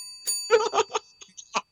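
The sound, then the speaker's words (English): A bell rings in a quick series of bright, clanging strikes, about five or six in under two seconds, with high metallic tones lingering underneath throughout. “Logic, ring the bell.”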